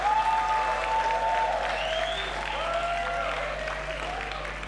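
A church audience claps together as a clap offering to the Lord, in steady, sustained applause for several seconds, a dense crackling wash of hands with faint voices rising and falling underneath.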